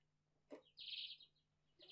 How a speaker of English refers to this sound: That's great. That's perfect. Birds tweeting.